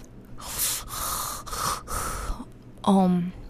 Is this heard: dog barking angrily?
no